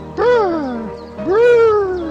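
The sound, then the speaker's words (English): A voice imitates the call of the 'stiff-nippled Nordic robin' with two long, wavering wails, each swooping up sharply then gliding down in pitch. It sounds more like a cat's meow than birdsong. “some of the most beautiful bird calls you will ever hear? The stiff-nippled Nordic robin.”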